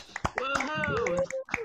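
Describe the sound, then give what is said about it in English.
A few quick, close hand claps scattered across a brief moment, mixed with people's voices whooping and talking over them. “It's like I give the episode number, we clap a little bit, and then we start to stagger after that.”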